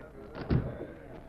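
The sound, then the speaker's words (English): A door opens with a single soft, hollow thud about halfway through as a tall man quietly enters a cafe in Rock Hill, over a low murmur of background noise. “the tall figure of Red Carson quietly entered and stood near the door”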